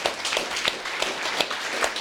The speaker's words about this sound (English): So give yourselves all a round of applause.